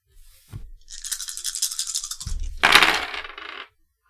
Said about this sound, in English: Go ahead and give me a resources roll. Be 5 dice since you've got the -1.